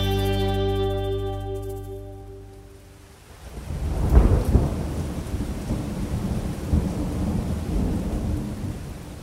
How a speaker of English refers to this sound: For this episode, I'm in the Gold Coast hinterland. You'll probably hear rain and some bird life outside